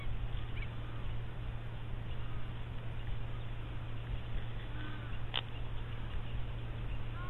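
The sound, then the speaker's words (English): A dense, steady wash of a quelea swarm chattering and chirping together in Kruger National Park, a continuous roar-like texture with a low hum underneath and an occasional sharper call standing out; a few larger birds such as starlings and babblers are caught up among them. “Quelea Swarms in Kruger National Park”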